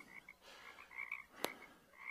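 A chorus of frogs croaking steadily in repeated trilling bursts, fairly faint and distant, with one sharp brief click partway through and no voices.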